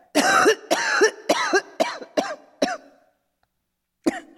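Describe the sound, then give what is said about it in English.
A woman who is an invalid getting better coughs in a rapid fit of six harsh hacks that gradually weaken, then after a brief silence lets out one final cough. Fairly loud, with no talking. “Oh, it's really very seldom I cough any more like that.”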